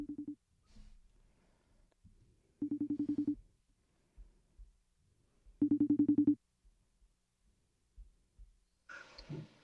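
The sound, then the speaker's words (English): A phone line rings out on an outgoing call: three buzzy, pulsing ring tones separated by long pauses, followed by a brief rustling clatter as the call connects. “Let's see if there's anyone else on the phone, shall we?”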